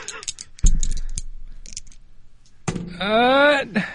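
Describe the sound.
Dice rattle in a quick burst of sharp clicks and land with a thud, then a few more clicks. A voice gives a drawn-out, rising exclamation at the end.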